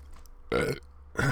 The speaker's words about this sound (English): Fuck you if you don't like the burp.